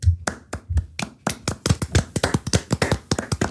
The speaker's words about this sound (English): It came back to a round of applause. So. What's it for? So the round of applause was for Russell in P10.